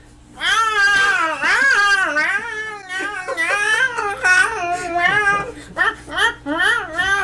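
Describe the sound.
A human voice imitates cats yowling while mating: drawn-out, wavering wails rising and falling in pitch, loud, running almost continuously for several seconds with only brief breaks.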